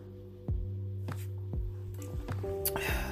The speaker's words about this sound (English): I feel like I gotta take another sip of water just cause.